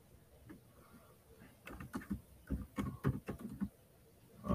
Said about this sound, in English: As we listen to the typing. I'm trying to... I'll find his name.